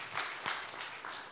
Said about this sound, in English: And so, Westside, would you show some love and give a round of applause for these babies and these parents this morning?